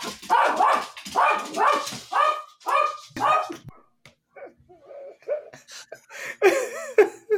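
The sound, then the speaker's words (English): A dog barks loudly and rapidly in a quick burst of about eight barks, then shifts into higher whines and yips before a final sharp bark, with no talking. “The dog is clearly very excited about this.”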